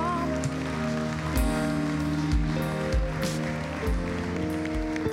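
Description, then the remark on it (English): A crowd gives a hand clap of praise, clapping steadily in a dense, continuous wash of applause, with sustained low musical tones, like an organ or keyboard, holding underneath the whole time. “Come on and give them a hand clap of praise in this house.”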